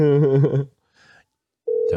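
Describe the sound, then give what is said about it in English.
A steady, flat telephone call tone sounds loud near the end, following a brief voice and a short quiet gap; the call is placed to a burner phone. “You're calling me on my dark phone.”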